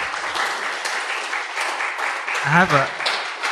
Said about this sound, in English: Thank you. Can you clap for him, please?